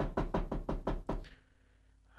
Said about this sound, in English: Okay, let's go over there. Let's knock on the door. Hello? Hello?